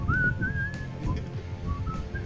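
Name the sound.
person whistling a tune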